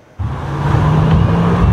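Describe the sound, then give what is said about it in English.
Road traffic on a busy arterial road in Vancouver suddenly swells into a loud, steady roar of car engines and tyres, with a deep low rumble from the vehicles and no voices. “Looking at the typical Vancouver arterial, it's easy to see the inequality. Most of the road given to cars.”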